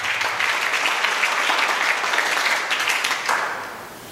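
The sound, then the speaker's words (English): An audience claps for the Lord together in a dense, steady burst of applause that holds strong for about three seconds, then begins to thin and fade toward the end. “Give the Lord a clap.”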